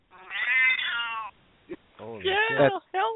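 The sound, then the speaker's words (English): A cat yowls loudly in a long, drawn-out wail, then after a brief pause lets out several more strained, warbling cries, alone. “You've got to be doing something bad to that cat to make it sound like that.”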